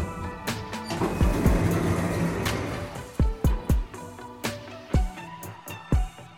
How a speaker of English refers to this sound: Doors opening.